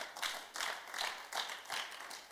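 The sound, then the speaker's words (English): A crowd claps together in a steady rhythm, roughly two claps per second, a moderately loud group sound with no voices on top. “I thought you are clapping.”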